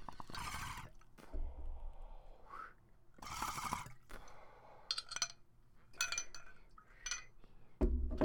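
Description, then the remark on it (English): Ice cubes clink and rattle inside a glass bong in several bright, sharp bursts as a bong toke is taken, with short pauses between the jostling clatters and no talking. “Sorry about that little clinkety-clackety. That'd be the ice cubes giving that fresh, fresh mountain bong toke.”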